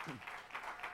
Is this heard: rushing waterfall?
no